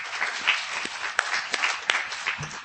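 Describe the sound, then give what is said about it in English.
An audience of students and teachers for the visually impaired claps steadily for a few seconds, a dense patter of many hands with a few sharper, louder claps standing out from the crowd. “Clap your hands.”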